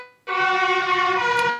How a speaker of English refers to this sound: Is that a fire engine? Amsterdam. That's it. We're in Amsterdam. How about that? It's perfectly fine. You just scared me a little bit, but that's okay.